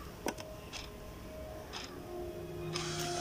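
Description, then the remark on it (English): A small clock with googly eyes stuck on it is handled and moved near the speaker, with a few knocks and scrapes at irregular intervals over a steady low hum and faint ticking. No one speaks. “Let me just put the clock near me so you can hear it.”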